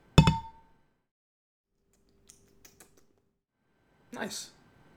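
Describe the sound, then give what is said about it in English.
A single bright clink of glasses in a toast with hazy lager beer rings out and fades quickly, followed by a few faint light taps and a brief soft, breathy sound near the end. “Well, we got a hazy lager here, so you want to take a sip of this? Very happy with it. Let's do it. Cheers.”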